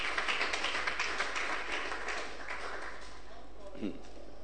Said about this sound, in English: Clap your two hands together for that.